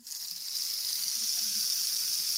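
A rain stick, made by turning its spikes around and sticking them back in and filling the inside with little pebbles, shaken to give a steady, bright hissing cascade of tiny pebbles, continuous and even for a couple of seconds, with no voices.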